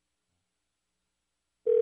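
Silence, then a steady, clear electronic telephone tone begins abruptly near the end, like a phone line starting to ring on the other end. It cuts off before any ring pattern completes.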